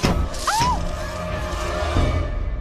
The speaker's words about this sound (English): And you start to hear like some thumping and some shaking.